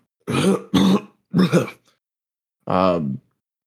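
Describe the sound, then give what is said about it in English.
Three harsh coughs from a man come in quick succession, the middle two nearly back to back, followed after a short pause by a brief strained vocal groan, as he coughs up a little blood while bridging a deck of cards. “He coughs up a little bit of blood as he bridges.”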